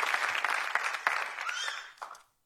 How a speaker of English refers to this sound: So can we just give him a round of applause and honor him? Thank you.